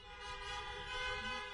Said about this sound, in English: If you can hear the sound of my voice this morning, please flash your lights or honk your horn.